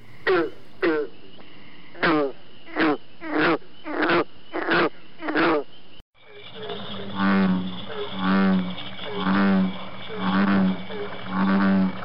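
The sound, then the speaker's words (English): A series of about eight short, twangy green frog gulps, evenly spaced, then deep, droning American bullfrog calls repeating in a steady rhythm with other frogs in the background. “The first is the green frog, followed by the American bullfrog.”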